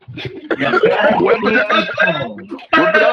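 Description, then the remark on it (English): A person voices a loud, gravelly roar that rumbles on for a couple of seconds, then breaks off briefly before a short, harsh burst like a cough. “Immediately after, you hear like a really loud, beefy roar, followed by a cough.”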